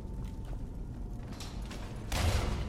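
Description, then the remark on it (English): A heavy trap door mechanism creaks and grinds open with a low, rumbling drag, ending in a louder, sharper clunk near the end, with no one talking. “Lydia will probably hit herself with a trap door again.”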